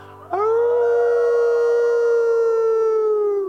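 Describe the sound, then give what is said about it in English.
A coyote lets out one long, loud howl that rises sharply at the start, then holds a steady, slightly falling wavering note for about three seconds, heard on its own. “The old coyotes howl.”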